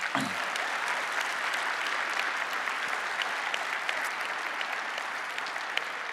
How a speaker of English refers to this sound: And can you give them a round of applause and just welcome them?